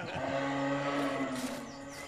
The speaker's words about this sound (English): Sounds like Mr. Mario has gotten up at last. That's not Mario. That's a deer. Sounds like a buck.